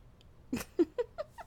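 A tiny kitten, about three and a half months old, mostly white with gray stripes down its back, mews in a quick run of four or five high, thin squeaks spaced about a fifth of a second apart, fading slightly toward the end.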